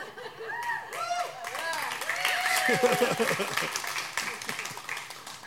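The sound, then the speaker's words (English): An audience applauds at a service at Crossroads church, with a steady patter of many hands clapping, mixed with murmuring voices and a few light chuckles, holding at moderate loudness for several seconds. “did I hear applause?”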